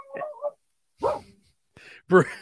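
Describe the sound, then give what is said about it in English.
A dog barks during a voicemail message in a few short, sharp bursts with brief pauses between them, sounding slightly thin and muffled as if played back over a phone line. “he said to skip the voicemail because his dog started barking.”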